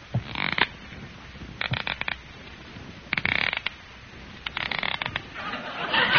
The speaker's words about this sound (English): Squeaky shoes, 20 cents.